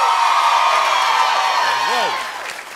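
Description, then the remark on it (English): A loud, dense roar of studio audience cheering, with spring breakers in the audience, holds steady, then eases off toward the end, where one voice lets out a rising-and-falling whoop above the crowd. “Listen to that crowd.”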